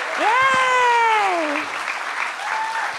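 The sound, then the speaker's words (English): An audience applauds the show's guests steadily for a few seconds while a loud, drawn-out whooping cheer rises over the clapping near the start, then the applause continues on its own. “Let's have one more round of applause for all of my guests: Paget Brewster, Demi Adejuyibe, Arden Marine, Amy Miller.”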